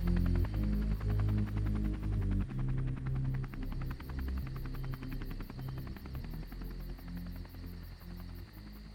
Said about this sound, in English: And maybe she says something, but no one can hear it over the sound of the helicopter, and it flies away.